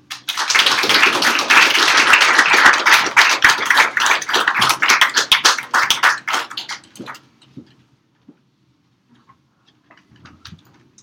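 An audience applauds with dense, steady clapping for about seven seconds, then it thins out into a few scattered, isolated claps before falling quiet.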